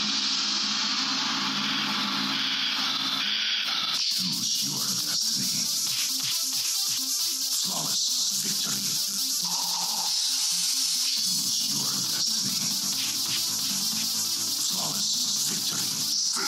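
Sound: radio static hiss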